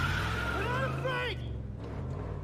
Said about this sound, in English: I hope it's just gonna peel out, isn't it? Yep.